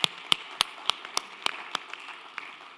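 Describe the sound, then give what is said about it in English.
An audience at Unity Minneapolis applauds its guests during a service: a soft continuous wash of clapping, punctuated by sharp, evenly spaced individual claps that stand out in a steady rhythm. No one speaks. “May we applaud our guests today, please.”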